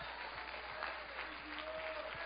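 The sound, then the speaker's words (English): An audience gives the Lord a clap offering, clapping together in a steady, dense wash of applause that holds at an even level throughout, with a faint sustained tone and murmur of voices underneath. “Let's just give the Lord a clap offering and thank you.”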